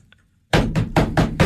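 Five loud, evenly spaced knocks on a door follow a brief moment of quiet, each one a sharp thud in quick steady rhythm.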